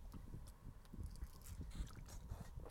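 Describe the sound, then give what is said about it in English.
Quiet mouth sounds of someone drinking water: a run of wet gulps and swallows mixed with soft lip smacks, with no talking. “Drinking some more water, making annoying noises.”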